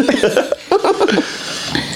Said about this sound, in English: Okay, I might cough after this, so give me a minute after. I was trying this whole time. I was off. Trying not to cough.